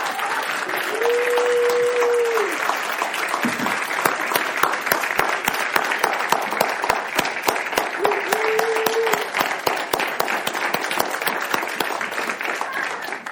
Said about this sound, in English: But can we just give him a round of applause for his faithful service?